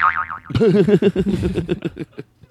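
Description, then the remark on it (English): A cartoonish boing sound effect: a brief high warble, then a loud springy twang whose wobbling pitch bounces in quickening pulses before fading out. No one speaks over it. “You say it again, and then you play the booing sound”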